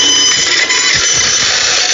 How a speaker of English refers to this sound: I'm going to turn on this bandsaw. I'm cutting.